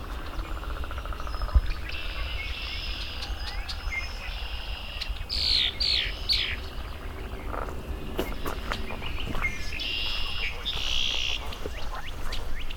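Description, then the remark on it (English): A male red-winged blackbird sings a few times, its short buzzy trilled phrases ringing out over a steady chorus of leopard frogs, chorus frogs and insects in a cattail marsh in spring, after a morning of rain has stopped; not loud. “I have a female red-winged blackbird in front of me. First one I've seen this year. Some male singing.”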